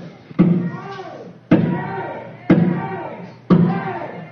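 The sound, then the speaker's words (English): Four heavy bangs on windows by demonstrators outside strike about a second apart in a steady rhythm, each a sharp thud, with a murmur of crowd voices and talking continuing underneath. “Our physical safety is being threatened by the actions of the demonstrators outside banging on the windows, which could easily get broken, and we will have a mob scene.”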